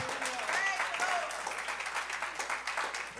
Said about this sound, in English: If you're ready to receive the word, clap your hands unto the Lord.